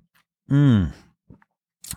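A drink is sipped, followed by a loud, drawn-out satisfied "ahh" sigh falling in pitch, then a couple of soft, brief clicks and a short hissy slurp-like burst at the end.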